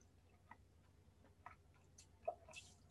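Quiet sipping and swallowing of water: a few soft, wet mouth clicks and gulps spaced irregularly over a low background hum, with no talking.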